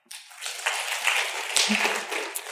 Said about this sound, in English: I want you to clap for the company that you trust the most. You can only clap once, right? So if you think that you trust Google the most, clap now.